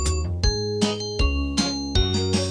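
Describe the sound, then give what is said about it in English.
A bus bell rings three bright, evenly spaced dings, each striking sharply and ringing on over a steady musical backing, with no voices. “The bell on the bus goes ding, ding, ding, all day long.”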